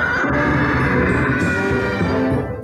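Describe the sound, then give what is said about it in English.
A StarCraft sound effect played when clicking on the Terran Academy: many voices screaming together, a loud, dense, continuous wail that holds steady for nearly three seconds before tapering at the end. “And this is what happens when you click on the Terran Academy in StarCraft.”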